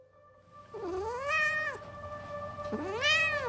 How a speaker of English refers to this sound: A series of meows and a paw to the cheek woke me up in the morning. In my excitement, I had forgotten to feed the poor guy the night before.